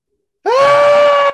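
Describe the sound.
A person lets out a single loud, sustained shriek lasting about a second, a steady high-pitched wail imitating the call of a Wendigo, starting abruptly after a moment of silence and cutting off sharply.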